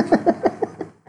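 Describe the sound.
A person imitates a goat's bleat with a quick, wavering run of about five nasal pulses, fairly loud, ending with a faint breathy sound.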